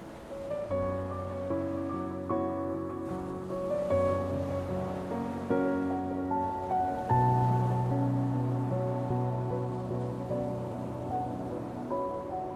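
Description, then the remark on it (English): Ocean waves wash steadily beneath a calm, sustained musical drone, the surf a soft, continuous hiss blending with long held tones, no voices present. “Offer up your pain your worries, your fears, and welcome her medicinal waves.”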